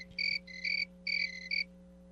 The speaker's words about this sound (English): Apparently crickets are involved here as well.